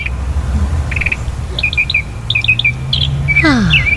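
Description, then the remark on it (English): Recorded birds chirp in quick repeated bursts of high tweets, several calls in a row over a low steady background hum, with a brief descending whistle near the end. “The birds chirping.”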